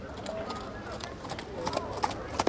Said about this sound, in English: Soon there is a clip-clopping sound.